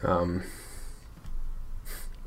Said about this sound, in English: I'm breathing because I can't breathe. I was eating ice cream earlier and I swallowed weirdly. What was it? Chocolate peanut butter cookie dough from Bluebell.